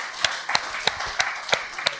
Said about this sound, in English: Look at all these safety Nazis clapping.